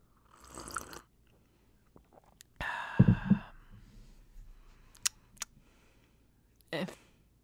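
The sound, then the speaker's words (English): Someone sips homemade French press coffee from a mug: a few short, breathy slurps and exhales separated by quiet pauses, with a couple of faint clicks, and no talking. “Take a sip of my coffee.”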